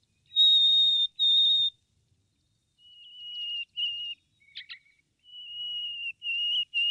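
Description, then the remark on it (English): Harris's sparrow song played as music in the first movement of a piece: single, clear, pure whistled notes on different pitches, two higher ones first, then several held tones a little lower, broken by a quick fluttering figure, with no voices. “The next bird to appear in this first movement is the Harris sparrow. He sings single, clear notes on different pitches.”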